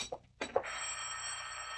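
telephone bell ringing

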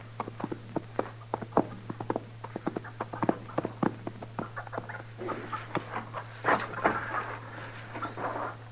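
horse hooves clip-clopping

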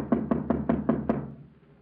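knocking on a door

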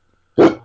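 dog barking

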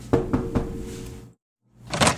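door being opened

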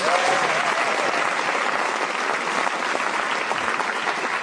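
studio audience applause

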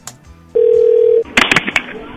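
telephone dialing and ringing

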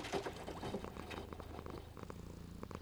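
cat purring

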